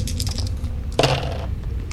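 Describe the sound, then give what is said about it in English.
A brief rattle of several dice rolled across a hard surface during a game, a burst of sharp clicks and clatters lasting about half a second over a steady low hum. “You want to make a, you want to roll all those dice, and...”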